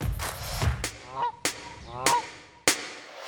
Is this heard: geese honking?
yes